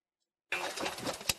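After a brief silence, a car engine idles with a steady rumbling hum, broken near the end by a short sharp click; the car has been pulled over by a police officer on a residential street in the rain. No one speaks.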